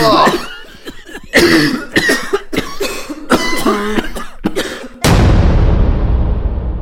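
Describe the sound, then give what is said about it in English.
Several people with a horrible cough going around a store cough harshly in quick, irregular bursts for about five seconds, some hacks rough and throaty, before a sudden loud rushing noise swamps everything. “No more smoking on store property till this horrible cough everyone has goes away.”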